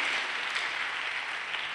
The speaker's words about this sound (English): Your hand clap can be better. If you want to clap, it's free. Hallelujah.